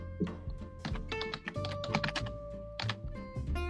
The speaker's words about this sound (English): Aggressive keyboard tapping. I will slam my hands.